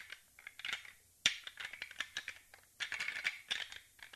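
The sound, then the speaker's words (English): Hard, clattering knocks and grinding scrapes of a rattle rack of antlers being clashed together to mimic two deer fighting, a sharp crack about a second in, then repeated loud bursts of clashing, with no voices. “They mimic two deer fighting, and they're kind of loud. It sounds like crash them together.”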